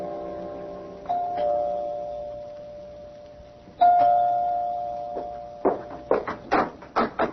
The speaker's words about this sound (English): You can go to his apartment. You can ring the doorbell. One thing about doorbells, they don't give off busy signals.